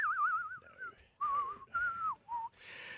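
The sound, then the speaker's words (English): A person whistles a short movie theme melody in several phrases, with wavering, sliding notes and brief pauses between them, fairly clear, ending in a burst of breathy noise. “You want to do the whistling bit?”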